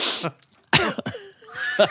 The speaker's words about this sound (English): Is it tickly cough?